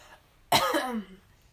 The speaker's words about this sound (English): One, get mom sick by coughing in her face. I feel really bad.